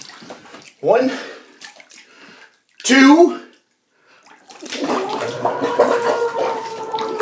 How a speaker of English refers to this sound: I am actually in the bath. And to prove it, I will dunk my head under the water. And you'll hear me scream, okay? So listen for the scream.